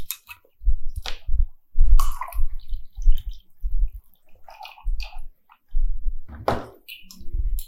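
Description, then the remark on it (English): Wet gulping and swallowing as someone drinks water during a break, a steady run of repeated swallows with small liquid splashes and sloshes between them, no talking. “Water break.”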